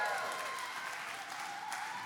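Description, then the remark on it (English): A crowd claps and cheers steadily throughout, a dense wash of applause with scattered whoops and shouts rising above it, loud and sustained without a break. “But maybe give them a cheer if you do love them, hey?”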